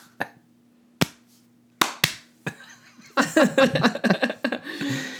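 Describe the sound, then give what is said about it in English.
A slow clap: five sharp, isolated hand claps at uneven intervals over about two and a half seconds, then voices begin talking and the clapping stops. “Slow clap. Slow clap.”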